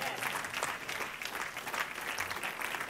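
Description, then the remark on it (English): A crowd applauds steadily for a few seconds, a dense patter of many hands clapping at once, moderately loud and heard without any voices over it. “That was worth a clap.”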